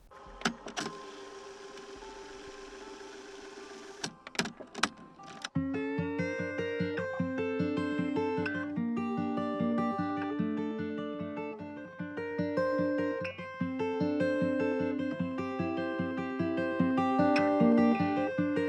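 An instrumental song intro opens with a hazy, hissing wash and a few sharp swells, then settles into a steady synth groove with a low bass line and bright, repeating keyboard notes. No singing.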